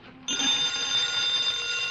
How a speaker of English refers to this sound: Answer the phone. Oh, come on, Jerry, you answer it. Dean Martin, I will tell you why I will not answer the phone. Indubitably, that is a call from NBC.